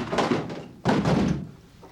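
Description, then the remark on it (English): Stifler barges hard against a locked door: two heavy thuds about a second apart, the second louder and rattling briefly before fading. No one speaks. “And the payoff is Stifler barges into the door and he says this.”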